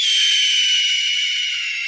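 A sound effect of a bird flying away from a polar bear: a loud, steady airy whoosh of bright hissing noise lasting about two seconds, easing off slightly toward the end, with no voices.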